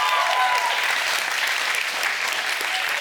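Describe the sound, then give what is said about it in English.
A crowd claps steadily for the youth leaders, a dense, even wash of applause that holds at a fairly loud level for the full three seconds, with faint whoops or voices mixed in. “Come on, clap it up for the youth leaders.”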